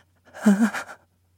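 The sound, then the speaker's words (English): A voice imitates the breathing pattern research subjects showed when feeling afraid: a quick, shaky, voiced gasping breath of about half a second, trembling in a few pulses, moderately loud against silence. “For example, when the subjects felt afraid, the breath sounded like this.”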